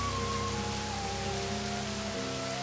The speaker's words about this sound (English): He is happy to get rained on.